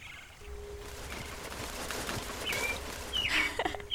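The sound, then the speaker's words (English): A flock of songbirds chirp and call in short, high bursts, scattered irregularly over a steady outdoor hum, growing a little busier toward the end. No one speaks. “Look how many friends you have! I don't have any friends. Are you my friend now, little bird?”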